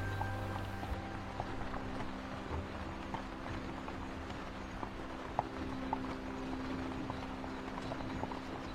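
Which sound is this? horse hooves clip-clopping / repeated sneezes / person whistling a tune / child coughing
horse hooves clip-clopping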